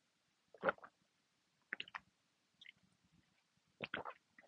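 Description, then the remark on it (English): Someone takes sips of water: three short clusters of wet gulps and mouth clicks separated by pauses, with no talking. “Before I continue, let me drink some water.”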